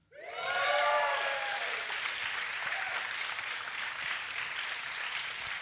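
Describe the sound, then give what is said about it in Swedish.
A live audience at a show recording at Lund Comedy Festival, in Stadshallen in Lund, bursts into steady, loud applause that lasts over five seconds, with a few high whoops and cheers rising at the start before settling into continuous clapping. “Kan vi få höra publiken?”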